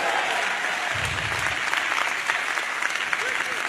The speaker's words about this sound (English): Why don't you clap for John for doing a little bit more?